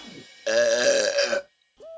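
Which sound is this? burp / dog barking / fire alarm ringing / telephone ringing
burp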